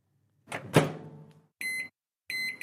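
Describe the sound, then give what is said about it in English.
A microwave oven door clunks shut with a short rattle, followed by two steady electronic beeps, each lasting about a quarter second, with a pause between them; clear, no talking. “Thank goodness for the trusty microwave oven, the saviour of leftover takeaways.”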